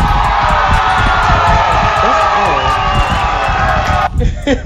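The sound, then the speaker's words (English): A loud, sustained wash of applause and crowd cheering with whoops and yells rising over it, holding steady for about four seconds before breaking off abruptly. “Hold up, let's give us a round of applause.”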